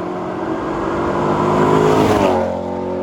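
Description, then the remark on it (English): The 4.7-litre V8 engine of a Maserati Quattroporte Sport GTS revs up loudly, its rising harmonic roar peaking around two seconds before easing back into a steady throaty idle; no voices. “But then as my sort of fun car, had a Quattroporte Sport GTS with the 4.7.”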